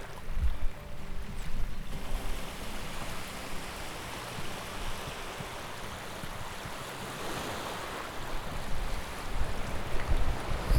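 Steady wash of sea surf rolling onto a shore at Fårö on a grey, hazy day, a broad continuous hiss with low rumbling swells, with a light patter of drizzle falling almost horizontally, and no voices.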